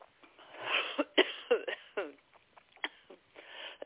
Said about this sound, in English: That's funny. That's just coughing out some of the energy you didn't need.